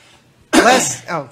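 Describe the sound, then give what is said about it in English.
A throat clearing to shift phlegm that has built up from allergies: one loud, raspy, gravelly rumble lasting about half a second, then a shorter, softer follow-up. No words are spoken. “I've got phlegm building up here thanks to allergies.”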